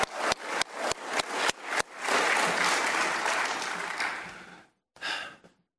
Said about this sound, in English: Now I'm going to give you one more chance to actually clap like you love the kid. You know, just go ahead.